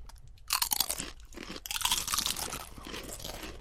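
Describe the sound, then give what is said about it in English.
Crisp, brittle crunching of regular Doritos Nacho Cheese tortilla chips with salsa on them being bitten and chewed, a burst of sharp cracks followed by steady, ragged munching that continues throughout with no talking. “Okay, so now we have the Doritos, which really is just a regular Doritos nacho cheese.”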